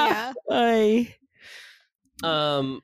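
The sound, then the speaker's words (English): Vocal yawning: a long, drawn-out voiced groan that stretches and bends in pitch, a soft breathy exhale, then another groaning yawn sound. No words are spoken. “Oh my God, I'm so teary eyed because I can't stop yawning.”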